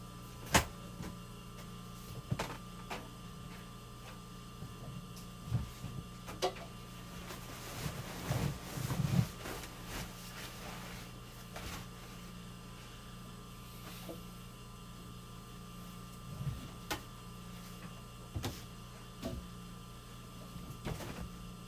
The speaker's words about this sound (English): Now I'm going to put this stuff in the dryer, out of the dryer, and then put new clothes in the dryer.